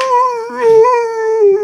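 A dog lets out one long, loud howl, its tone holding steady with a slight waver before trailing off. No other sounds or voices accompany it.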